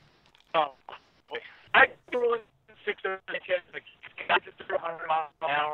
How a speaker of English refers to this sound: your tin can is sounding like a static filled tin can all of a sudden.